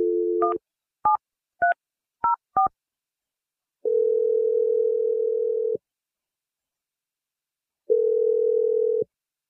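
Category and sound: signal or alarm, telephone dialing and ringing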